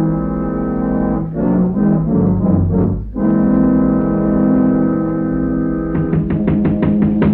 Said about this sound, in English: Oh, that awful foghorn. It gives me the creeps.